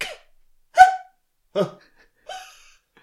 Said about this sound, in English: Old man cough.